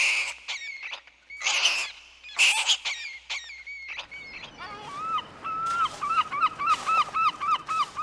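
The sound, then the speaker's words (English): Sewer rats in Temple Bar squeak in a busy, overlapping chatter of shrill chirps and squeals, short bursts at first, then a quicker repeated run of cries over a low rushing background. “The sounds of the sewer rats.”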